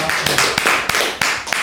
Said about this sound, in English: Woo! Round of applause.